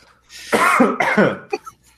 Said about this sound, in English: sorry. I went to talk and then coughed.